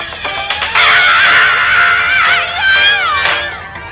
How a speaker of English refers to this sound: I just like that song, and I like how he screams at the beginning.